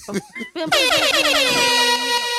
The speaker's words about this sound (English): Air horn.